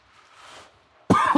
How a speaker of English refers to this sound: Excuse me. And none of this is going to be edited, so you're just going to have to hear me cough.